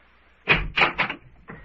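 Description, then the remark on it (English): A door being opened: three quick rattling clunks from the latch and handle in a row, then a softer scrape as it swings, with no one talking. “get behind the door as I open it.”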